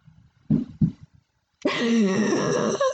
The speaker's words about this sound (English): How loud was that? So loud. Our stupid fucking cats just came barreling through. One cat. That was only one cat. Yeah, that was one cat on 4 legs.